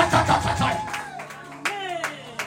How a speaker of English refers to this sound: Clap your hands and say, I receive. Say, I receive. Say, I receive.